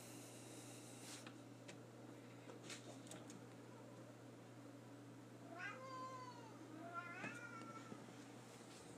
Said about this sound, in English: What are you meowing about? I heard you over there. You're missing your mommy? Yes, you're missing her, huh?